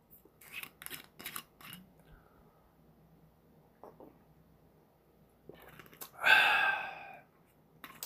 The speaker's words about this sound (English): Let me take a sip first before I continue.